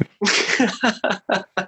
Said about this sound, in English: He sneezed. That's great.